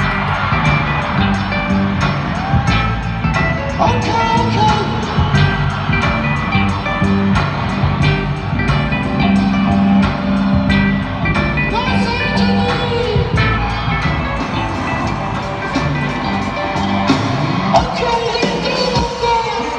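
A singer screams and yells over a loud live concert song, the raw shouted vocals riding on top of dense band music with crowd noise throughout.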